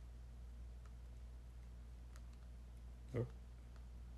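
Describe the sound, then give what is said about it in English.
Several faint, scattered clicks of remote control buttons as someone navigates an on-screen keyboard on a big TV, spaced irregularly, with one slightly louder press near the end, over a steady low hum. “We're navigating the keyboard with the remote control on this big-ass TV.”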